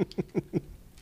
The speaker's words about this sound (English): So I apologize for the water sounds, you know, in the microphone.